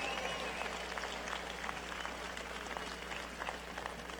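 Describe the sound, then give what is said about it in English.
Sustained applause from a large crowd at the Milwaukee Bucks' arena, Fiserv Forum, in Milwaukee, for the Bucks' four principal owners, a dense steady patter of clapping at moderate level with no pauses, running the whole length without any talking over it. “How about a round of applause for the Bucks four principal owners and what they have given us in Milwaukee and the state of Wisconsin.”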